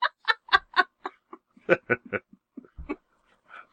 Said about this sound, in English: That's a pathetic crow, man. The new rooster. It's like he's crying.